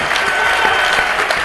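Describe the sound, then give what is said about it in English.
A large live audience at the 2017 Entree Leadership Summit, on day three, claps steadily, a dense, continuous wash of applause at a fairly loud level, with a faint murmur of voices underneath. “Well, as you can tell, we are live, and this crowd is absolutely amazing.”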